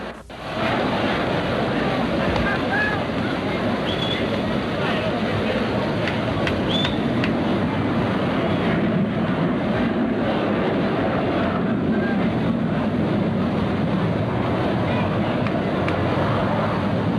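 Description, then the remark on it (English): A jet aircraft flying high overhead makes a steady, broad rushing roar that fills the whole stretch, constant, with a faint murmur of voices underneath. “There was a jet high overhead.”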